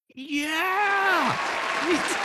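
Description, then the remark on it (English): A long, drawn-out shouted cheer rises and then falls in pitch over a steady, noisy wash of clapping, followed by a brief second whoop as the applause continues. “Don't pick the mic when you're cheering.”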